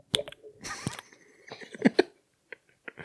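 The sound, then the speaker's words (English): A person mimics a tiny splash with a few quick, wet mouth sounds, soft, in short bursts separated by brief pauses. “It's the tiniest little splash.”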